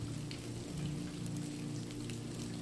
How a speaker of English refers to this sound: Rain splatters on the pond. The once glassy surface, now overcome by ripples and swirls.